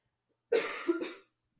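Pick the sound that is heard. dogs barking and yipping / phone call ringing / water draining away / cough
cough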